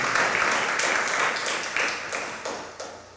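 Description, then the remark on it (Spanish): A crowd applauds steadily in the name of the Lord, a dense wash of many hands clapping that holds throughout and slowly fades, with a few sharper bursts near the end. “Dale, levantas otro aplauso en nombre del Señor.”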